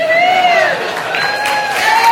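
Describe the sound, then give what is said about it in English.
A short stretch of light, polite mercy applause from a church audience, a soft steady patter of clapping with a drawn-out voice tone gliding over it, fading slightly toward the end. “It's a mercy clap.”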